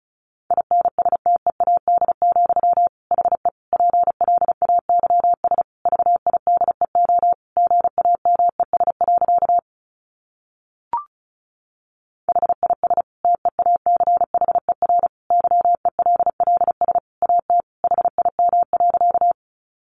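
Fast Morse code at about 35 words per minute: a steady mid-pitched tone keyed in rapid dots and dashes, broken by a two-second pause with a single click, then continuing.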